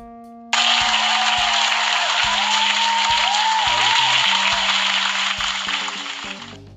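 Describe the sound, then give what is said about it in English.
A burst of loud, steady applause for a group of women starts abruptly and continues for several seconds, dense clapping that tapers slightly at the end, with faint low musical tones sounding beneath it. “Quick round of applause for these ladies, man.”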